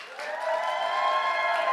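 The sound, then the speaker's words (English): An audience claps in a steady, dense wash of applause in a clap-off to see who is more famous, Barack Obama or Donald Trump, swelling slightly and holding, with a hint of voices cheering mixed in. “You guys going to clap now to see who's more famous, all right?”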